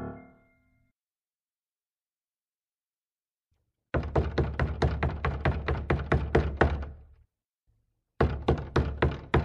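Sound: knocking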